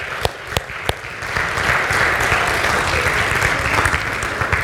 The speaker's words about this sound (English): The clapping is intended to encourage people who are uncomfortable being up on stage up here. So thank you for being up here.